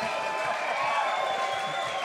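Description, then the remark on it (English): Dense, steady applause from a crowd fills the whole moment, a continuous wash of many hands clapping with cheering mixed in, fairly loud and sustained without a break. “Round of applause.”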